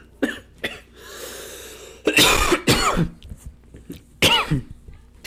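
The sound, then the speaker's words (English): A person chokes and coughs on sparkling water: a few short, harsh coughs, a raspy breath, then loud sputtering bursts and one last hacking cough. The coughing is irregular and strained, with no talking. “I'm choking on my sparkling water.”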